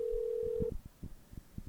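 A steady, low-pitched telephone ringing tone of a phone call going to a voicemail box that has not been set up holds for under a second and then cuts off, followed by a string of soft, irregular low thumps.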